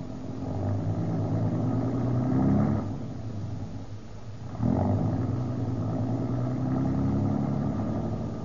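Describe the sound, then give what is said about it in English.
A car engine rumbles steadily while driving, its low drone rising and falling as the vehicle shifts, with a brief dip before revving back up to a sustained hum. “pull down here at the corner of College and Broadway.”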